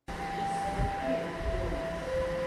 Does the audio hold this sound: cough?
no